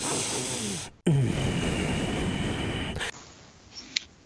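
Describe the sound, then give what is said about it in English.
A man breathes loudly, heavily and rather lustfully straight into a microphone: a rough, hissing breath of about a second, a brief gap, then a longer, harsher exhale that cuts off into quieter background noise. “There it is. There's the heavy breathing.”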